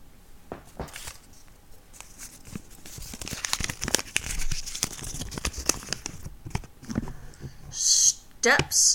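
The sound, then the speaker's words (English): Crinkling and rustling of a folded paper topic slip being picked and opened, with a run of dry crackles and a few sharper crisp bursts near the end. “All right, so we have this little smorgasbord of folded up paper topics, and we're going to pick one.”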